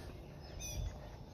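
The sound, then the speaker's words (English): Birds chirp a few times outdoors in the morning, with soft high tweets over a low background rumble and no one talking. “and you hear the birds are out here this morning.”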